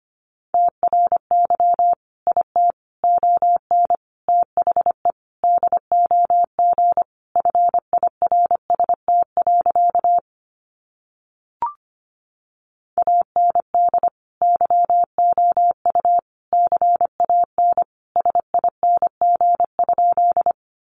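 Fast Morse code at 25 words per minute, sending practice sentences built from the top 400 words, as a single steady mid-pitched beep keyed on and off in quick dots and dashes, with a short silent break and a faint click about halfway through.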